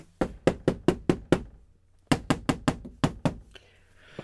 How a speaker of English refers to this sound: suddenly there was a pounding on the door.